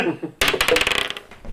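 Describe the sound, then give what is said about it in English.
A die clatters across a hard tabletop in a quick burst of rapid rattling clicks that start abruptly and fade within a second, preceded by a faint murmur of voice. “You want me to blow on your dice?”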